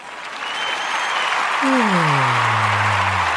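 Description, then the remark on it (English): A crowd claps steadily throughout, and partway in a voice lets out a long, falling cheer over the continuous applause. “Crowd, take it away.”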